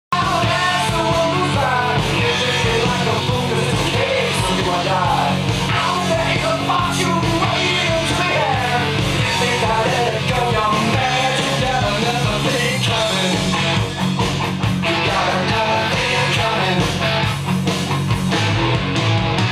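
A loud heavy metal rock song plays continuously, with driving drums, dense distorted guitars and a shouted vocal line, steady throughout with no talking over it.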